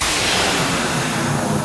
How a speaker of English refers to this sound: This blow dryer thingy's amazing! It's giving me so much volume!